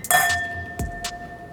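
glasses clinking

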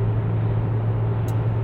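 car interior noise

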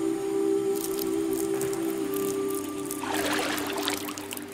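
urinating

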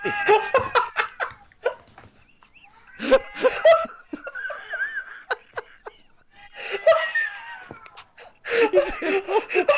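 cat meowing

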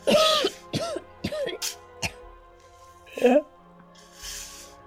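coughing and throat clearing

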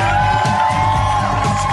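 audience applause and cheering

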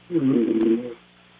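man snoring

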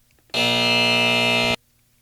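game show wrong-answer buzzer

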